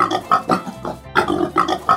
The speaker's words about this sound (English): They suggested instead that farmers focused on one breed, and this lucky pig was the large white.